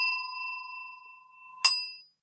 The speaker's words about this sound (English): if either one of us says the phrase or word thing or things, when we're not talking about the film The Thing, the monster in the film The Thing, or this game that I'm explaining at the moment, then we get to ring a bell like this. Ding.